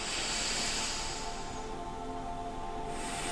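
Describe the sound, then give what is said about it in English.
Slow, airy breathing with a hissing, surf-like rush that swells and fades, then begins to rise again. The sound is soft and steady, with no talking. “And you probably hear like that my breath is like the wave, the ocean wave that hits the beach.”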